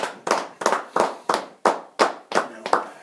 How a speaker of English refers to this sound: So I think a round of applause for the guys we lost this week.